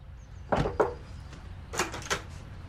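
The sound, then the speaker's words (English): A plumber knocking on the front door of a big suburban house to announce he is there to do the plumbing: two firm raps, a short pause, then a quicker cluster of knocks, moderately loud, with no voices. “He knocks on the door to announce that he is there to do the plumbing, but he gets a surprising reception.”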